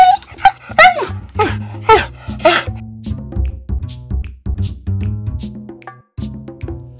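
A dog whimpers and wails in a string of high, sliding whines over the first few seconds, fairly loud, then quieter yelps continue over a steady low rumble.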